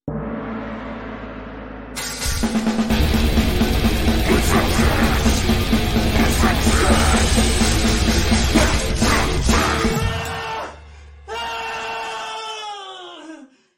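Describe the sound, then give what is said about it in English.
A loud, chaotic burst of noise gives way to a person's drawn-out scream near the end, its pitch sliding downward as it trails off. “the question is, should the screaming at the end be a little longer?”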